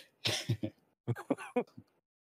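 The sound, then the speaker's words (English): Someone clears their throat, two rough bursts of harsh, gravelly rasps separated by a short pause, with no talking. “I'm sorry, I got to clear my throat.”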